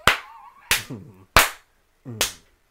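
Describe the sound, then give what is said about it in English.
Five loud, sharp hand claps land at uneven, offbeat intervals, imitating one person clapping off the beat to soulful music, each followed by a short hummed vocal tone that fills the gaps between them. “So loud offbeat that it killed anything that they had going like, on.”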